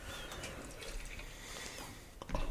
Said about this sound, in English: Should be dated on the bottom of this can, like all Night Shift cans. Still not good at pouring pounders three ways.